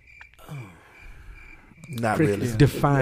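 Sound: crickets chirping sound effect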